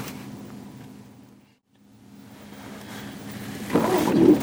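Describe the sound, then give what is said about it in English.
A low, steady vehicle engine rumble fades almost to nothing, then returns and builds, swelling into a louder, rougher roar as the motor is started again and revs, as police let the vehicle go forward through metal gates. No one speaks. “So we're starting the engine again.”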